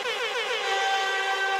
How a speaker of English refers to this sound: Okay, fantastic. So there you've heard the buzzer, and we are now in the fun part of the show.